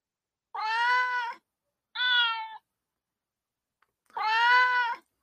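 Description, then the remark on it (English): A cat meows three times, with a long drawn-out call, a shorter one, then another long meow after a pause. No talking is heard. “The cats have taken over the show.”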